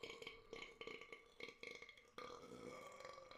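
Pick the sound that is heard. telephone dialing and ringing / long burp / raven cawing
long burp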